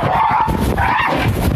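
An aggressive neighborhood dog at the door of a house barks loudly, two rough, drawn-out barks over a noisy, scuffling background with no talking.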